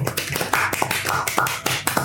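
A short, sparse round of applause from a small group for the Galaxy Master: scattered, uneven claps, with faint voices mixed in for about two seconds.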